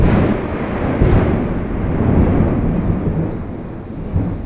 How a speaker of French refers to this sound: Comme cet orage dans les montagnes laotiennes.